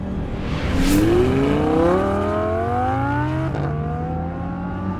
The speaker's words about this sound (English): Paul Snyder punched the accelerator and his black Datsun 240Z roared to life. He swung into the left turn lane to pass a slow-moving sedan.